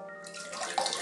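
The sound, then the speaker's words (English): A steady stream of urine from a person sitting on a toilet splashes loudly into the toilet water, starting after a brief pause and continuing without a break, with a low hum underneath. “That's the sound of my pee.”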